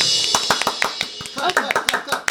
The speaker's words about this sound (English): I'm clapping.